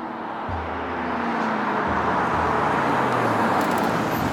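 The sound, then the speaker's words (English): A car engine rumbles steadily as the car pulls into a parking lot, its low hum sliding down in pitch over a wash of road and tire noise, continuous with no voices. “I was feeling pretty optimistic when I pulled Ashton's car into the parking lot of the meet.”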